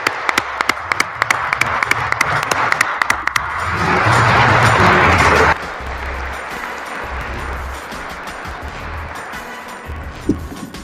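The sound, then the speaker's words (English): A crowd applauds steadily with dense overlapping claps, swelling louder for a couple of seconds midway before settling back into sustained clapping. No one speaks. The applause is for the chair, Mayor Eric Garcetti, joining on Zoom. “So please give a huge round of applause to our chair, Mayor Eric Garcetti.”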